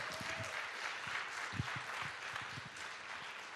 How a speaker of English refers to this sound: Come on, if you believe that, give the Lord a good round of applause today.